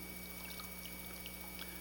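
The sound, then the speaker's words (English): Water pours into a cup as it is filled up again after being emptied, in a soft, continuous trickle with small splashy bursts, fairly faint and lasting about two seconds over a steady low background hum. “so let me just empty it back out and let me fill it up again.”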